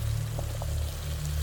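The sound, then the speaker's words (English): Water boils in a fishbowl at a steady low rumble, with a few faint bubbles popping now and then. No voices are heard. “White smoke was pouring from his fishbowl, and a tiny orange blob floating on the surface of the boiling water.”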